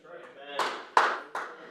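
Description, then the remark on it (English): A voice speaks briefly, then an audience breaks into steady, rhythmic group clapping: four loud, evenly spaced claps, each ringing out briefly, with voices mixed underneath. “It's all right to clap.”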